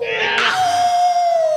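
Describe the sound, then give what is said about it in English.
A person imitates a pig squeal with one loud, high-pitched, sustained shriek that holds steady and then slowly drops in pitch, with no talking. “I've been through squeal like pig.”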